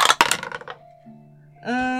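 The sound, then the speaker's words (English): Dice rolled for a persuasion or deception check clatter across a tabletop in a quick burst of bright, rattling clicks that settle within a second, followed by a quiet steady hum and then a sustained tonal sound. “Oh my gosh, which is the dice? Oh no! I roll so terribly.”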